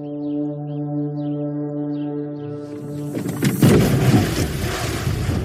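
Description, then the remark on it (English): A steady boat engine drones, then a woman's head clips the side of the boat mid-backflip with a sudden knock, followed by a loud, rushing splash as she backflips into the water. No voices. “You clipped your head.”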